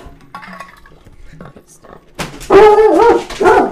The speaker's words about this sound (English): Jesus! Anytime a dog scares us for no reason. I don't even know what was there.